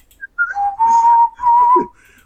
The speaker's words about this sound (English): I spent a lot of time spinning those melodies in my head so I wouldn't forget them. I got home and whistled it into a dictaphone. I love how he whistled it.